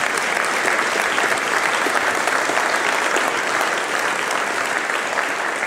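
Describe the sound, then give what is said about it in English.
A crowd claps steadily for several seconds, a dense, even wash of many hands applauding at a consistent loud level with no voices rising above it. “You can applaud that.”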